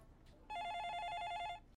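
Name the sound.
telephone ringing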